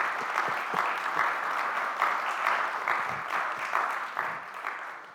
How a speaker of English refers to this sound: Can we give them a hand? They did a great job.